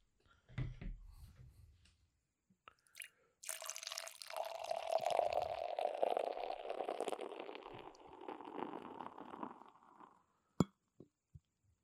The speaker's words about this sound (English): With the fourth beer poured out, we have in front of us just a stout. Just a humble stout. Coming in at 17.1 ABV.